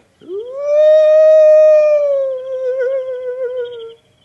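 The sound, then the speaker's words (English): A person imitates an owl call as a signal, with one long, loud hoot that swoops up and holds steady for several seconds, with no other talk. “Hear that? What? That owl.”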